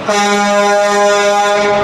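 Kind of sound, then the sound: vehicle, truck horn honking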